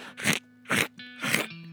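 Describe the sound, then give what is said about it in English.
A voice imitates crunchy chewing of macaroni, making three loud, crackly crunch bursts at a steady rhythm, with a faint hum between them. “And so the Barbie kept eating the macaroni. Kept eating the mac-aroni. Chewing.”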